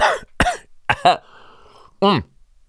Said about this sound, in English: Sorry, I gotta clear my throat.